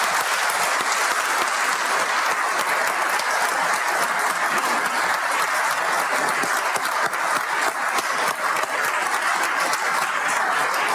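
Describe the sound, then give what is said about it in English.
A large audience in Indiana applauds itself and its statewide partners steadily for about eleven seconds, a dense, sustained wash of many hands clapping at once with no voices rising above it. “So please give yourselves and our statewide partners a big round of applause on a job well done.”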